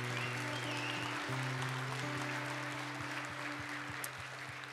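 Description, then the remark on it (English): An audience applauds the risen Lord Jesus for several seconds, a dense, continuous wash of clapping, while sustained low keyboard chords hold and shift underneath. “applaud him together, this risen Lord Jesus.”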